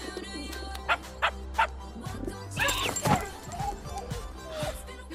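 A dog barks three times in quick, evenly spaced bursts, followed by a longer, rougher run of yelping and whining sounds that trail off into quieter noises.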